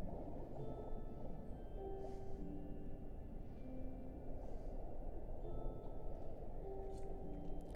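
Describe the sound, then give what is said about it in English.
Long, mournful whale calls drift in and out over a constant low underwater rumble, several sustained tones rising and holding, fairly soft, with no voices. “The sorrowful notes echo through the cragged ravine, and for a second you see the radiant whales.”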